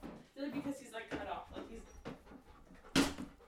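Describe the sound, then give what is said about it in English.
A dog pants and lets out short, high whimpers, mixed in with people talking, ending with a brief louder burst of noise. “The panting is quieter than the, like, the barking.”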